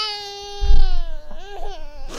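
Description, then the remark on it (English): A colicky baby in a bassinet cries at 2 a.m. in one long, strained wail with a wavering high pitch, loud and sustained, then breaks into shorter fussy sobs toward the end. No one else speaks. “Someone was colicky.”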